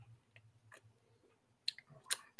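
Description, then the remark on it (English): A sip of moonshine: soft wet mouth clicks, then a couple of short slurping pulls from the drink over a quiet low hum, with no talking. “Let's take a sip.”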